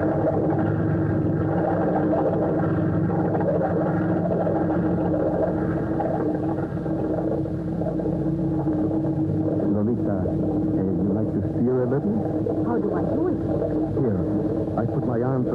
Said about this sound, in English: Here we go. Oh, what a wonderful thing is a boat with an engine.